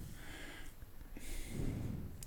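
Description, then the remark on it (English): A man breathes heavily over an hour after being picked up, labored breathing with rough, snorting inhales and breathy exhales, growing louder toward the end, with no talking over it. “You shouldn't still be breathing like that.”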